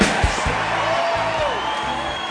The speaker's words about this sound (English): Anyway, it's amazing what happens when thousands of people yell, son of a bitch, together.